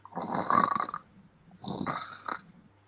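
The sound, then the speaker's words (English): A man's voice imitates the wrestler Warrior's snorting growl in two rough, gravelly bursts, the first longer and louder, the second shorter after a brief pause, with harsh breathy rasp throughout. “Warrior snorts and does shit like that.”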